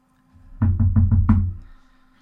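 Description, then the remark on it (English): A quick run of firm knocks on a door, evenly spaced, with a hollow, booming thud to each rap, then a short resonant fade into quiet. No one speaks. “And suddenly you hear like a knock.”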